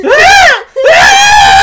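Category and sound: woman screaming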